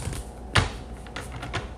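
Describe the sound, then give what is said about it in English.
A deck of cards being shuffled, with one sharp slap followed by a few softer, papery riffling bursts; no one speaks. “I'm just trying to make sure that I get a good shuffle here.”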